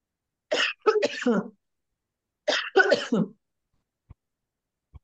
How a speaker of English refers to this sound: Very dramatic pause for a cough. I've been muting for the same reason. I'm in the deep south. We have all kinds of stuff in the air. I cough a lot.